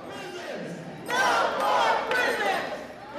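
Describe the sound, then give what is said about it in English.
A crowd of a few hundred protesters chants and shouts together outside the convention center in Philadelphia, blocking traffic on a peaceful march through Center City. It is a dense wash of many voices that swells louder after the first second and stays loud and steady to the end. “Outside the convention center in Philadelphia, a few hundred people block traffic for a peaceful march through Center City.”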